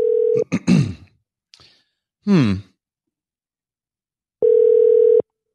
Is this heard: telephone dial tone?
yes